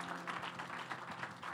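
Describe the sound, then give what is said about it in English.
An audience applauding to welcome a guest minister from Arkansas, many hands clapping together in a dense, steady wash of sharp claps that holds at an even, fairly loud level without pause, with no one speaking over it. “I want you to put your hands together and welcome our friend from Arkansas”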